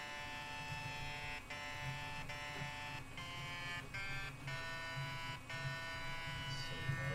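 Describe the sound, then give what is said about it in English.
A steady, harsh buzzing tone keyed in a Morse code pattern, with brief breaks and clicks at irregular intervals. It runs continuously at an even loudness, with no talking over it. “Okay, here's the pattern. What does that say?”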